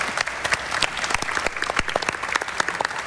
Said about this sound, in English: Round of applause for our panel. Thank you, everyone.